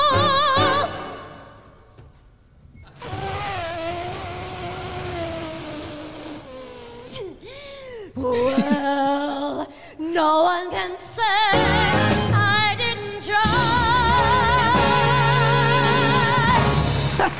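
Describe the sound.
A woman sings a show tune in long, sustained notes with gliding pitch and vibrato. Instrumental accompaniment swells into a fuller, brighter texture for the final few seconds.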